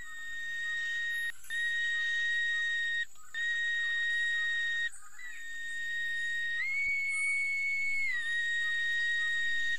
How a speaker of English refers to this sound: He reached into his pocket then, taking out a small whistle, and lifted it to his mouth.